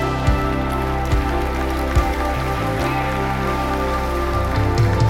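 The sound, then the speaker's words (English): A church audience gives the Lord a clap and a shout, a dense, continuous wash of applause at steady loudness, with sustained musical tones held underneath throughout. “Now give the Lord a clap and a shout.”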